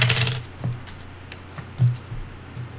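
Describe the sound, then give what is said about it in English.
Several dice clatter and tumble across a table, a burst of sharp clicks followed by scattered lighter taps as they settle, as a player rolls all their dice in a tabletop game. No one speaks. “So, you're just gonna roll all your dice.”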